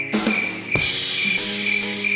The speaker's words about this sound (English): Got a little cricket noise there, what's that about?